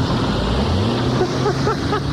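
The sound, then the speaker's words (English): A brand new car revs hard and peels away, heading out to the parking lot, its engine roaring loudly with short squealing chirps from the tires near the end, all continuous. “Oh, that's Drew peeling out for the parking lot.”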